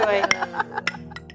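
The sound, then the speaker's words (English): Several quick glass clinks ring out one after another in a toast to joy, bright, with voices murmuring underneath. “I love Cheers. You. Cheers to joy.”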